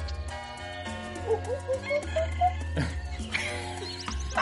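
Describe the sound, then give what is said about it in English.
Someone imitates monkey jungle calls, a run of short, bright whooping chirps that rise and fall in pitch, set against a dense, steady low background hum. “Is that your best monkey jungle sound?”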